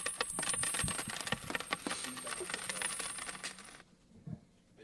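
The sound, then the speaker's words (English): Coins are handed over and dropped, clinking and jingling together in a rapid flurry of bright metallic taps and rings, fairly loud, for several seconds before stopping, followed by a single soft knock. “Can I get two baby coins? Not quite a big coin, but let me get two baby coins.”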